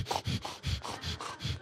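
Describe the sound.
A person imitates a French bulldog's labored breathing: about six quick, raspy snorting breaths in a steady in-and-out rhythm, fairly loud, with no talking.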